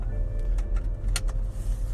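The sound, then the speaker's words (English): Steady low engine rumble and road noise fill the cabin of a moving car as its owner drives, with a few faint clicks and rattles scattered over the continuous drone and no one speaking. “my car. I'm driving.”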